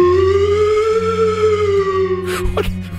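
A slide whistle, played during a Halloween game on KSON radio, holds one long, loud, reedy tone that bends gently upward and then sags, before breaking off into a couple of abrupt noisy bursts over a steady low hum.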